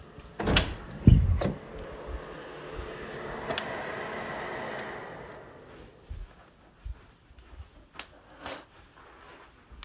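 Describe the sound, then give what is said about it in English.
A door clunks open with a couple of sharp knocks to let a dog come inside, followed by a few seconds of steady airy hiss and then scattered light taps and shuffling, with no one talking. “My dog just wanted to come inside, so I was like, okay.”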